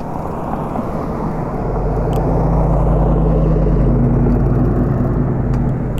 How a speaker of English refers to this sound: Holy molies, man, there's a lot of cars right now.